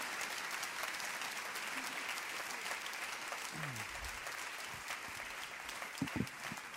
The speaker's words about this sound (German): Und ich finde, wir können ihr doch einen grossen Applaus geben, weil sie hat so viel Herzblut in der Orbung gesteckt.